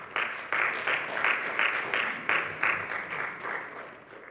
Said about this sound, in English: Come on, let's give Jesus a hand clap.